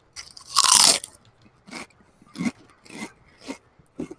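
A big crunching bite into food, followed by steady rhythmic chewing with about five crisp crunches spaced roughly half a second apart, loud with no talking.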